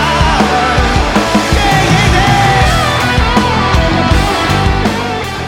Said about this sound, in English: The crowd started doing the hey, from the storytellers that we talked about.